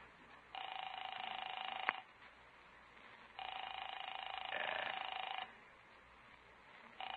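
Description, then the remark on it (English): A telephone rings in repeated long bursts, a trill of about one and a half seconds each with pauses between, heard through a line while nobody picks up because the person being called is not home. “I'll phone Paula.”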